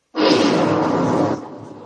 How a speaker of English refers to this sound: All right, I'm going to do an explosion on this one.